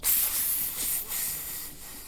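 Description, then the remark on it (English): A snake gripping a chicken hisses, a steady airy rush of high noise lasting about two seconds, swelling slightly a few times before trailing off, with no voices. “It opens its mouth and it hisses at you.”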